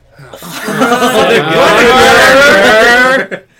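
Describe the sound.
A voice imitates a tour bus engine revving, one loud, continuous growl whose pitch climbs and wavers for about three seconds before cutting off, with no other sounds around it.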